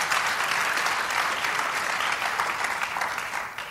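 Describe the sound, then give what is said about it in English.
An audience claps steadily for guests from the Mighty Oaks Warrior Program, a dense, bright patter of many hands that stays loud throughout and begins to thin slightly at the very end. “You guys already clapped for them, so that would be weird. You can clap again.”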